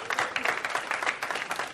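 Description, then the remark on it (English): An audience applauds Eatonville, Florida and all it has accomplished, many hands clapping in a dense, even patter that holds a moderate level throughout with no pauses or voices standing out. “And another round of applause for Eatonville and all you've accomplished.”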